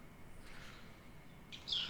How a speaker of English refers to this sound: Well, I can hear the birds, so that's a nice environment. Oh yeah, and they do that in January too.